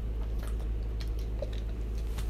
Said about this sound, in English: And then, drinking water, by the way, if you're curious, when every time I kind of stop talking, whenever I drink water, basically, because, I'm actually hot.